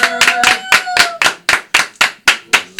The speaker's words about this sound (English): I need all my motherfucking people to stand up, clap your motherfucking hands for all my guests in the building today. Put your hands together.